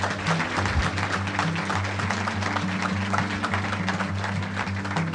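An audience at the Orlando Improv gives itself a round of applause, clapping steadily throughout, a dense, crackling wash of many hands at an even loudness, with a low steady hum underneath and no voices.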